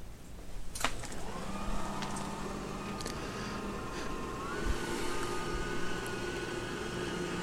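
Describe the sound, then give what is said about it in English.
A robot vacuum clicks on in spiral spot cleaning mode, spinning around in a circle, and settles into a steady motorized whir with a faint rising whine, running continuously at low volume with no voices. “we're going to do spiral spot mode, and then we're going to hit start, and let's see what it does”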